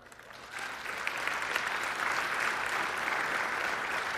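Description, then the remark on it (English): A church audience bursts into sustained applause during a sermon, a dense, steady wash of many hands clapping that swells within the first half second and holds strong to the end, with no voices audible. “Now, we'll see if you clap through the whole sermon”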